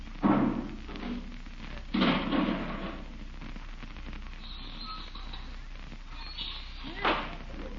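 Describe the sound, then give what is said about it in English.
A few heavy, dull thumps land at intervals as a garbage can is brought in and bumped against the kitchen door, with some rustling and faint background noise between them. “Hey, he's coming around to the kitchen door. Bringing in the garbage can again.”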